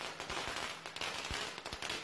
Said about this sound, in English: Usually at the end, there's one or two bigger fireworks that'll go pop, pop.